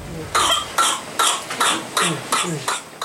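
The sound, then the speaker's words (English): A whooping cough coughing fit: about seven harsh, forceful coughs burst out in rapid succession, loud, with brief strained gasps between them and no talking. “A generation ago, whooping cough was very rarely seen in developed countries.”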